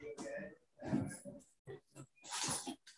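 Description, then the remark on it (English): A 14-pound puppy named Obi whimpers and snorts in a handful of uneven bursts while hurling itself against a door to go outside, with brief smacking noises against the door between the whiny cries. “Sorry, my puppy is going insane, smacking at his door.”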